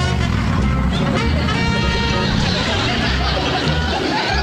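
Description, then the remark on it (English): A car meant for drag racing is brought out with a steady, loud engine rumble and a brief rising whine, while a crowd murmurs and chatters in the background. “Okay, you can bring her out now, Grandpa.”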